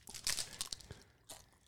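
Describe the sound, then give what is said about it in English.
A stale chip being crunched: a quick series of dry, crackly bites with bright, noisy bursts, a short pause, then one more crunch. Fairly quiet overall, with no talking. “Is that the whole chip? It's stale.”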